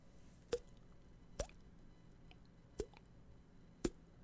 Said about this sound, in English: Water dripping.